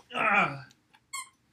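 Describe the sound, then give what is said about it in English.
A dog gives a squeaky, high-pitched whine lasting about half a second, followed by two short, faint squeaks with silence between them. “No, buddy, you can't squeak while we're trying to record.”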